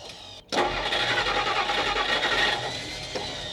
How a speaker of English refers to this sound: God darn it, this dang old truck has let me down for the last dang time, I swear.